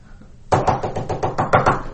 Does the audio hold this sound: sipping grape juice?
no